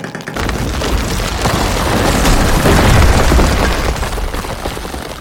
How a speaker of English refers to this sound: The last straw came, though, when he and another miner were working 200 feet below ground. Suddenly, a large rock came loose in the ceiling.